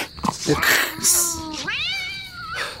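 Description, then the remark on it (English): A cat yowls in long, drawn-out cries that rise and waver in pitch, loud and insistent, with faint voices murmuring in the background. “Hey, don't kick that cat.”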